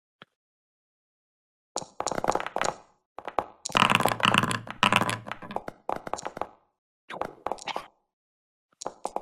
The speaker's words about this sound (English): You rolled a bunch of dice.